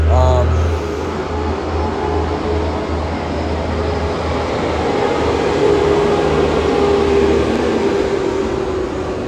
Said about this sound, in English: Freaking garbage truck.